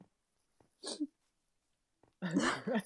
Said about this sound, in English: There's that sniff.